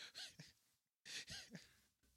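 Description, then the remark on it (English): Heavy, airy breathing into a microphone: two loud breaths separated by a short pause, each with a harsh rushing hiss. No one speaks. “You can't hear yourself breathing in the mic?”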